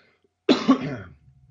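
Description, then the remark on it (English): A single fairly loud cough with a throaty, clearing quality, a sharp burst followed by a second rough push that trails off into quiet. “Nice cough button”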